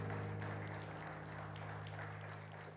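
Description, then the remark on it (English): An audience claps their hands to the Lord as they are being seated, a dense, steady wash of applause that holds at a fairly even level throughout, with a low steady hum underneath. “One more time, clap your hands to the Lord as you're being seated.”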